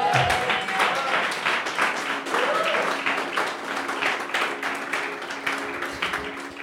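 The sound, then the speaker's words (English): A crowd at a praise and worship gathering gives a big clap, applauding steadily for several seconds: a dense, crackling wash of many hands clapping at once, with a few faint voices and cheers mixed into the noise. “Yeah, give a big clap.”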